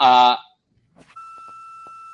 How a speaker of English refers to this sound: oh, somebody's beeping. Okay, I just wanted to make sure that wasn't me.